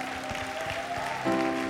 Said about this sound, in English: But let's give God a clap offering.